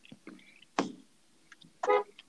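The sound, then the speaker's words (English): Muffled interior of a car driving to Walmart: a low, steady road rumble with scattered thumps and brief tonal bursts, one strong harmonic blast near the end that resembles a horn. “This man is in the car, bro.”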